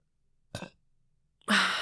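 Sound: burp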